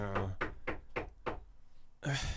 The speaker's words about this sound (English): Who is that? Yeah, knocking on the indoor door of my house. Like, somebody had to have gone through the front door, and then now we're knocking on the door of the manic cave.